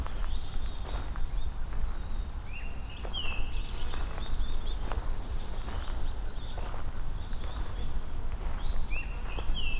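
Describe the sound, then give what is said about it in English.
Two kinds of birdsong, pine warbler and eastern towhee, ring out: quick trills and bright whistled phrases repeating over a steady background of crunching footsteps and outdoor rumble. “Pine warbler, eastern towhee.”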